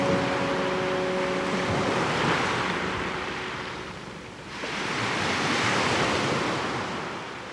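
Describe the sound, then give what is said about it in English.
Ocean waves break on the shore in two long, rushing swells that rise and fall, with a steady roar of surf and some wind noise, fairly loud. No one speaks. “Like, the ocean is my prayer closet, I guess.”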